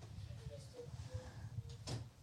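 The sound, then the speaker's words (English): A door swings shut with a short, solid thud near the end, preceded by soft creaking tones and a steady low rumble underneath. “I need you to be quiet, though. Close the door, please.”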